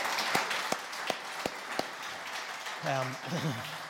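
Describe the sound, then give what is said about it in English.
An audience applauds, a steady wash of clapping with a few sharp, evenly spaced claps standing out near the front, before a voice briefly speaks over it. “Give all of a round of applause.”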